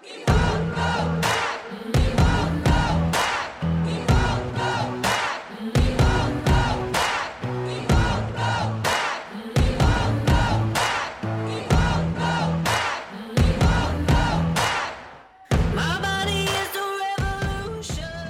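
A large crowd of protesters chants the slogan "We Won't Go Back" in unison, repeating it in a steady rhythm every couple of seconds. The loud shouting continues throughout, with a brief break near the end.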